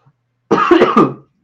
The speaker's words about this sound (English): I needed a cough, but I was getting through my explanation before I did. You powered through like a true professional.